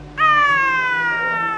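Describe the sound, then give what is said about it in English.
A single long, loud, wavering yowl like an angry cat, made by a human voice. It holds steady for over a second with a slight downward slide. “She sounded like a window closing on a Tonkinese cat's tail.”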